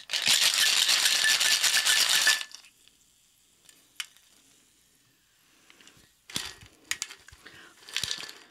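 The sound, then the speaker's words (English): Ice rattles hard inside a cocktail shaker with gin and pomegranate seeds for a couple of seconds, loud, followed by a pause and then several short clinks and scrapes of ice and glass. “So I'm assuming that the ice is going to bust apart some of these pomegranate seeds and give some color to our gin, and once we have our gin in the glass, then we will add our champagne.”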